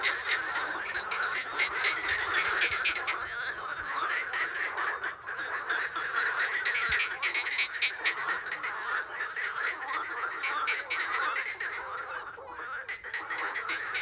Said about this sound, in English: So instead of a music clip, that was Ivanka's frog video.